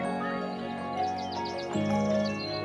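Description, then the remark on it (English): Birdsong: a run of quick, repeated high chirps rises over a steady, humming tonal background, moderately loud, with no voices. “On the surface, birdsong is simple. It's a pleasing wash of sound that just happens in the background.”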